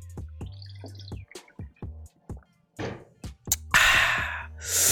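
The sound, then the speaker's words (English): Someone takes a swig of water: a series of small clicks and thunks from handling the bottle, a few wet gulps, then a loud breathy exhale after swallowing. No one speaks. “Let me get a swig of this water.”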